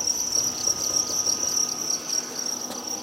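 A dense, continuous chorus of many farmed crickets chirping together in sanitized containers and buckets, a steady high-pitched trill filling the space, with no voices present.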